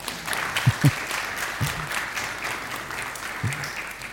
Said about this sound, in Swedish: Säg ett varmt välkommen till församlingen i Bussryd som är här på besök. Bussryds missionsförsamling, ger dem en applåd.